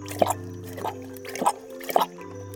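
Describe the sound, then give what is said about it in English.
Water drips and laps at a water hole in four wet, plopping splashes spaced about half a second apart, moderately loud over a steady low background hum. “Ah, here's a nice water hole.”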